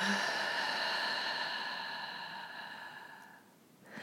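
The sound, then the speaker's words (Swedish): A long, slow breath out through the mouth during a deep-breathing exercise, airy and steady, gradually fading over a few seconds, with a soft sustained tonal drone underneath and a fresh breath in through the nose starting at the end. “vi tar 3 djupa andetag in genom näsan, ut genom munnen”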